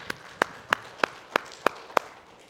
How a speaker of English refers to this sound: Let's give Him one more hand clap, if you wouldn't mind, please.